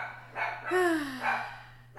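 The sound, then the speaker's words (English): A dog barks excitedly several times in quick succession at someone at the door, one bark stretching into a drawn-out, falling yelp, over a low steady background hum with no one talking. “Someone is at my door, and my dog is going crazy.”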